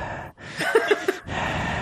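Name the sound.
heavy breathing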